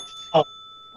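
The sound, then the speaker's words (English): A single short, bright bell ring sounds once, loud, with a quick decay and near-silence before and after. “The bell.”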